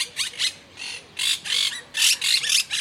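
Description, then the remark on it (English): Harsh, raspy squawks from a flock of chattering pet monk parakeets, arriving in quick repeated bursts with brief pauses between, loud, with no voices present. “But these cute and sociable birds also make really great pets.”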